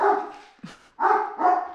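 big dog barking

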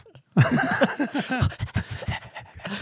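dog panting

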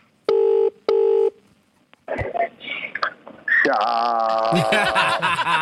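telephone keypad dialing tones

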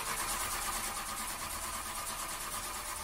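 car engine cranking

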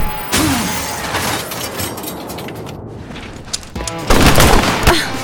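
gunfire

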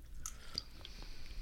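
chewing gummy candy

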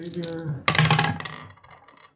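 dice being rolled

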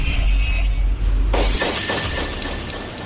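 glass shattering sound effect

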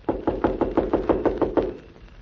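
knocking on a door

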